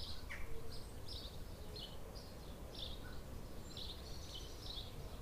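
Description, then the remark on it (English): Repeated high, thin bird chirps and short calls of a 4 a.m. dawn chorus of many birds scatter across the whole recording, fairly faint, over a steady low rumble of outdoor background noise with no talking. “As well as the usual 4 a.m. dawn chorus of a billion birds.”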